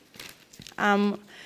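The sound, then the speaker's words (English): A sheet of paper with Bible verses written on it being folded: soft, crinkly rustles in a few short bursts, then a brief, louder hummed vocal tone breaks in before the paper noise fades back to a faint rustle. “Let me just fold my paper.”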